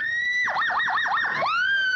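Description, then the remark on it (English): A high, piercing human distress holler that imitates a siren: a sustained wail breaks into four or five rapid warbling dips, then swells back to a steady, loud cry, heard alone. “My holler was a distress holler. It sounded like a siren.”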